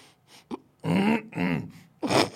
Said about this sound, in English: Who's laughing? Is that a person laughing? Yes. That's a smoker's fucking cough. Isn't it?